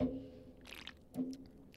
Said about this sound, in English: Sorry to take a sip.